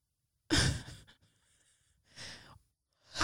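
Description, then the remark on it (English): A big, breathy yawn, a loud drawn-out exhale that tapers off, followed by two more heavy breaths a moment later. No talking. “Sorry, I had a yawn. Did you have to yawn so large?”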